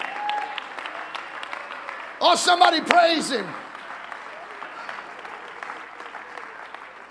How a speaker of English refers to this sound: Oh, clap your hands unto the Lord right now.